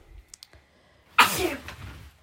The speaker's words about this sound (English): That was a big sneeze.